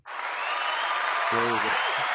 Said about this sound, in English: So today was the first day I launched my first episode. Put in claps.